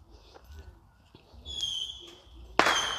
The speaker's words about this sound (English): So you're hearing the fireworks, and I think it's fun. I think it's scary for animals. Like, why are you guys scaring us every time of year around this time?